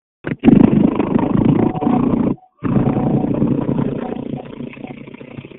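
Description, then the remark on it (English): A car engine idles with a steady rumble, muffled as heard over a phone line from a caller's unmuted phone on a group call. It cuts out briefly partway through, then continues and gradually fades a little. “Okay, somebody needs to put their phone on mute. We can hear the car.”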